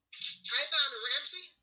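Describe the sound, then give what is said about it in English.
A thin, tinny voice over a phone line breaks up into garbled, crackling fragments, cutting out briefly before resuming for about a second and a half. “I can hear the phone is breaking up.”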